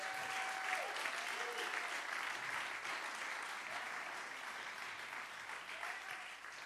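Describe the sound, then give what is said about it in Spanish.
An audience at a bilingual Spanish-English church service breaks into strong, sustained hand clapping for Jesus, King of Kings and Lord of Lords, a dense steady roar of applause that holds at full loudness throughout, with faint whistle-like tones and voices mixed beneath. “Dale aplausos obey. Al Rey de Reyes, strong hand clap y Señor de Señores.”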